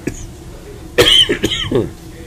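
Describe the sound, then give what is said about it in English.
A sharp cough bursts out, followed by a couple of rough throaty hacks in quick succession, then a brief wheezy breath as it settles. “Yeah, the cough.”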